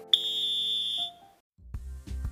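A single loud, shrill whistle blast signalling the end of a running interval holds one steady high pitch for about a second, then stops. Low rumbling thuds follow after a brief silence.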